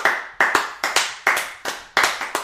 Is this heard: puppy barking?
no